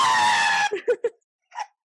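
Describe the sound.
A person reenacting a boy's encounter with a creature lets out a sustained, high-pitched scream of mock terror, followed by a few short panting yelps and a brief final cry, loud.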